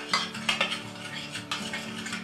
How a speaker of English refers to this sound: Then alternate with the flour and the water until you've used everything up. A little flour, a little water. I find that sometimes it's easier to take a spoon and mix together than a fork.